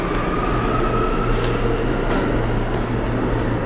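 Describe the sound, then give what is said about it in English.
Steady, loud rumble of a subway train filling a station, a constant low mechanical drone with a faint whine above it, continuous for the whole stretch with no voices. “I'm taking the underpass so I can be as close to home as possible when I get out of the train.”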